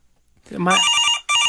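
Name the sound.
office telephone ringing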